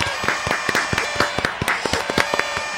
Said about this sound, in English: Yeah, I should play some applause.